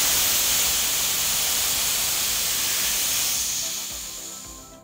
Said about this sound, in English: And you, as a frequent listener, you have heard a sound produced when water vaporizes on sauna stones.